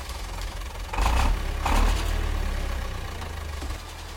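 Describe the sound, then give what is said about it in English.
An engine is turned on, cranking over with a couple of strong bursts, then settling into a steady low rumbling idle, fairly loud, with no voices. “I'm sure we can get the song generator to do that, but first we need to turn on the engine.”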